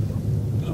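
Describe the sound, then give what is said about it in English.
A steady low rumble of a car driving along a road, with constant engine and road noise filling the brief moment and no distinct events. “We'll park the car and then we'll take a wee walk along here.”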